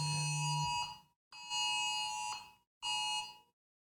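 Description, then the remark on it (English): A phone alert blares in three loud, harsh bursts, each a buzzy electronic tone with sharp high overtones, separated by brief gaps of silence. No one speaks over it. “Sorry, my phone just went off.”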